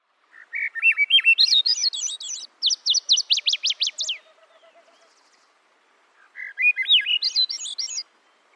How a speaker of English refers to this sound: Oh, yeah, I'm just soaking up some of this bird song, feeling my stress melt away.